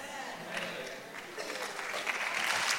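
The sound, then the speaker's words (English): Steady audience applause, a dense crackle of many hands clapping that swells slightly louder toward the end, with faint voices mixed in. “If you're going to clap, clap really loud.”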